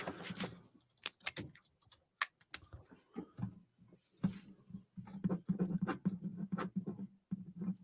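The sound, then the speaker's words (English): A pen writing with emphasis on a glass table in a studio: sharp irregular taps and clicks give way to steady scratchy strokes, fairly loud, with no voices. “You write with some emphasis in there”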